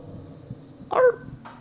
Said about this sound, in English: Okay, doggy, bark once if you understand us. Oh my god. Oh my god. Okay, do another one. Not another bark.